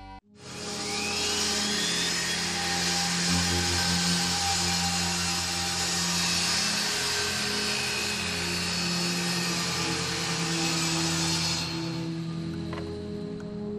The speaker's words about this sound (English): Back from commercial, Randy is sawing wood while Jules waits.